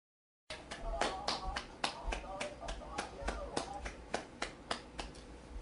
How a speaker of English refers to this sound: I just want to start this movie off with a clap because this is one of the underrated low budget movies I ever seen.